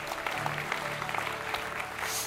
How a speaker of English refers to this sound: Clap your hands and rejoice in the Lord this morning.